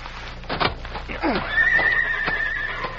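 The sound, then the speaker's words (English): One of the Clayton horses neighs and whinnies loudly, its high wavering cry stretching over a couple of seconds, with a few faint thuds and knocks around it. “Those are the Clayton horses, all right.”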